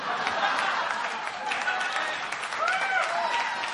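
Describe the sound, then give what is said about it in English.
An audience claps steadily during a sermon, a dense wash of many hands, with a few voices and light laughter mixed in underneath. The applause stays even and fairly loud throughout. “Anyway, stop clapping so I can finish my message.”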